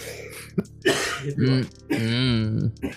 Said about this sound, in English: Ooh, it's the fever. Having a coughing fit.